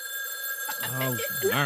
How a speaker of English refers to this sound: The phone is ringing. Answer it.